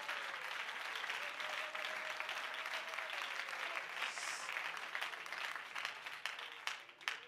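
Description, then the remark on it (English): A large audience claps steadily in praise of the Lord, a dense wash of hand claps sustained throughout before it begins thinning into scattered claps near the end, with a faint voice underneath. “Why don't you clap your hands unto the Lord and give him praise?”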